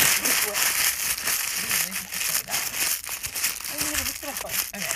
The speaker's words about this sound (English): Okay. Sorry about that intermission, it was just I was crumpling this paper, and it was just so weird,